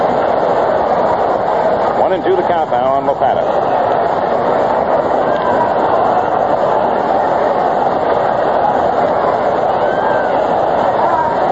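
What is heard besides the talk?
baseball stadium crowd roaring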